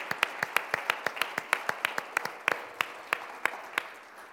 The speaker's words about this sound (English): Hay que darle un aplauso a cada uno de ellos. Give a round of applause to each and every one of them.